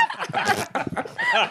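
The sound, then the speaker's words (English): Several voices together vocally imitate a moan, a dog's bark and a fart in one brief, overlapping burst, guessing how a single button making all three sounds would sound, fairly loud, with snickering laughter mixed in. “Wait, let's all do it. Moan, bark, fart.”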